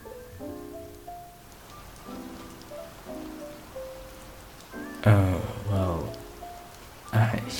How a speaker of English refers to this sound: Oh wow. I did not know it was gonna rain today.